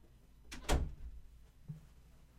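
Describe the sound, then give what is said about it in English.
A door opens with a sharp latch click followed by a heavier clunk to let a dog named Davis in, then a soft low rumble and faint shuffling settles in. No one speaks. “I got a dog at the door. One sec.”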